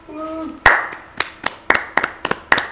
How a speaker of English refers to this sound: It's a very golfing clap, isn't it?